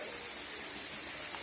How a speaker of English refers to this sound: It's the waterfall on the side above. You can see the little pool it's draining into. Pretty cool. The waterfall from above.